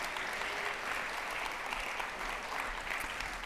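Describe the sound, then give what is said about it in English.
An audience applauds steadily as a pastor is invited up, a dense wash of many hands clapping at an even, sustained level throughout, with no voices standing out. “Let's give him a round of applause as we invite him up here.”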